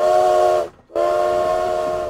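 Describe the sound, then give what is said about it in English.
A loud steam train whistle sounds in two long, steady blasts separated by a brief silence, its rich, reedy tone ringing out clear with no voices. “I took the 1:30 train from King's Cross, boarding early so I had plenty of time to find a nice seat.”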